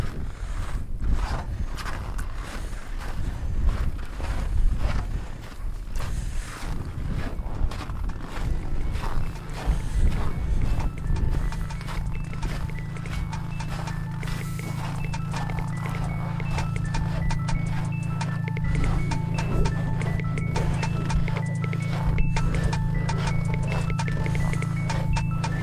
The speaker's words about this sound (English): That was the sound of boots crunching through the snow at the South Pole.